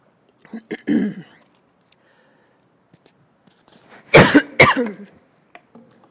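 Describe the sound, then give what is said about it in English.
A few harsh coughs from a speaker giving a Bible teaching: a muffled pair near the start, then two loud, explosive coughs in quick succession, followed by faint rustling and quiet. “Sorry, when I cough, I should probably cover this, huh?”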